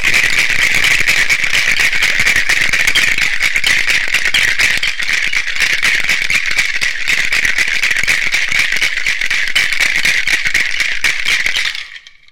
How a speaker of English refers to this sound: There we go. Put the top on the shaker, and this is the fun bit.